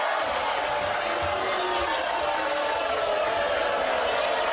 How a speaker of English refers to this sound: Whoa. Why y'all booing this guy? What did he do?